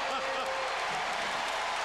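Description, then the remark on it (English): A basketball arena crowd at a Mavs–Grizzlies game cheering after a Finley dunk in the third quarter as the Mavs take the lead, a dense, steady roar of many voices, loud and unbroken across the whole couple of seconds with no single voice standing out. “This crowd's going crazy.”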